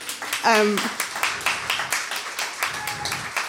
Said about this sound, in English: And can you all give like a really big round of applause to my sister who's here, who let me do that with her food?